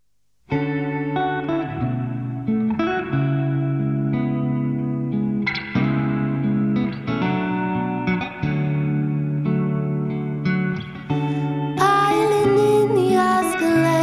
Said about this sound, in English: let's hear a live acoustic performance of her new song